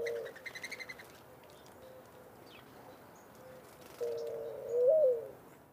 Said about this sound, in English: Like most songbirds, male mourning doves sing their songs to both mark their territory and attract a female to mate. Females also will sing and give a similar coo to the male, but it's not as loud and is often less organized.